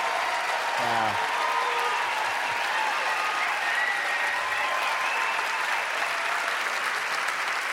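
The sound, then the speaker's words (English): A crowd applauds steadily throughout after St. Paul Mayor Chris Coleman proclaims Thursday, December 11th, 2008, The Morning Show Day in St. Paul. A dense wash of clapping holds at an even level, with a brief voice-like tone near the start poking through the noise. “You know, the laugh lines, the applause.”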